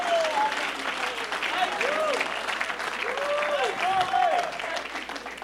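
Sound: audience clapping hands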